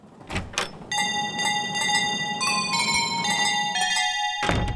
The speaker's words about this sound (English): That's an unusual shop bell.